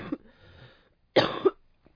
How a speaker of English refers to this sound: I always cough, so I think that's just me coughing.